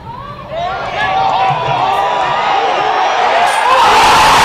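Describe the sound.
A disc golf crowd erupts into loud, sustained cheering after a player's shot with a putter, with many overlapping voices whooping and shouting in rising, high-pitched bursts that swell and stay loud throughout.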